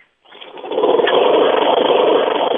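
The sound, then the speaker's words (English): A lawnmower engine in Michigan starts up after a brief silence and settles into a loud, steady, buzzing drone that runs without a break, with no voices. “and I am a lawnmower listener.”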